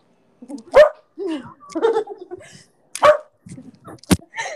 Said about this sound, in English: Oof, dog problems. Dog problems. Oh, dog problems.